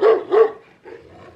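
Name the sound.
dog barking sound effect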